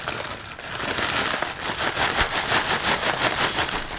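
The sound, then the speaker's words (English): Chips rattle and rustle steadily as a bag is shaken and poured into a bowl, a dense, crisp crackling hiss that holds a fairly even loudness for several seconds with no voices. “Chips in a bowl.”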